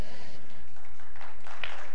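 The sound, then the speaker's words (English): A church audience applauding during a service, with a steady wash of many hands clapping that swells slightly toward the end. There is no speech, and it lasts about two seconds. “That definitely deserves some applause.”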